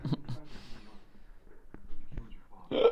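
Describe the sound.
A couple of abrupt hiccups, short sharp catches about half a second apart, with soft vocal murmuring before and a brief voiced burst right after.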